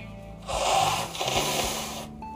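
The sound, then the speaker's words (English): Someone blows their nose: a loud, wet, honking burst of air lasting under two seconds, with a brief dip partway through before a second forceful push, then quiet. “So I'm blowing my nose.”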